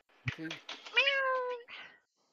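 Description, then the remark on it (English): A woman's voice imitates a cat's meow, a drawn-out rising-then-falling mew lasting about a second, fairly loud, with a short vocal sound before it and a brief trailing note after. “Yeah, she does really good meows.”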